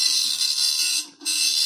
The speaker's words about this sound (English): Is that a shredder? That's a dot matrix printer from the old days. Oh, very good, yeah. Kind of a contemporary to the dial-up internet, if memory serves.